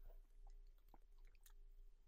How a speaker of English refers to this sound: So let me take a sip of water.